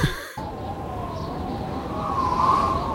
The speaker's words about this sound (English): can you take the spoiler siren before and make it loud?